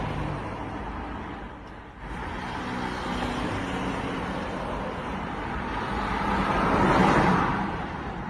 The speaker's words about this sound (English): It's cars passing by. There's an old man crossing the street. A phone is ringing.